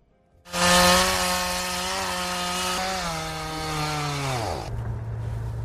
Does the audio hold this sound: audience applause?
no